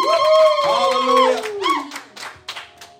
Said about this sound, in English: Put your hands together and then take your seat. Amen. Amen. Hallelujah. Oh, clap those hands well for Jesus. Clap those hands well for Jesus.